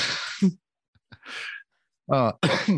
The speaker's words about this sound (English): Oh, my first cough came off a nicotine vape.